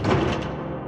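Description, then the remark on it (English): A thick, heavy metal bar scrapes as it slides across a metal door to seal it shut, in one steady, grinding pass, fairly loud, lasting just under a second with no voices. “"You shouldn't be here," she said, as she slid a thick metal bar across the door, sealing it shut.”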